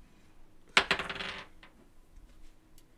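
Dice clatter onto a hard surface: a sharp first impact, a few quick bounces, and a brief tumbling rattle, followed by a couple of faint ticks as they settle. No one speaks. The dice are rolled for an insight check on whether a frog is poisonous.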